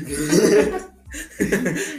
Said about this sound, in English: Yeah. Cough. Bleep. Cough. Bleep. I'm not saying the full word. Dude. Cough.